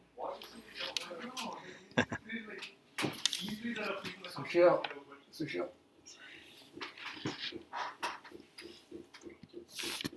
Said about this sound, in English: I locked my door